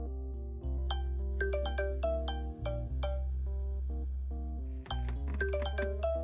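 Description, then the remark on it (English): A phone rings late at night with a melodic tune, bright chiming notes in quick succession repeating over a steady low hum, fairly loud, with no one speaking. “that's your phone. This late at night.”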